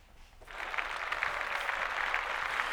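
Applause starts after a short pause and holds steady, a dense, hissy clatter of many clapping hands at an even level with no one speaking.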